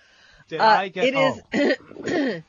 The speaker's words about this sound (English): I'm curious. Did you get a diagnosis for your cough?